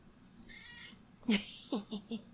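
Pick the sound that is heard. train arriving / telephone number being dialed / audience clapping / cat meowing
cat meowing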